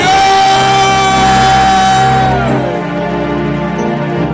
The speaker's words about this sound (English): Clap your hands and give God a mighty shout of it.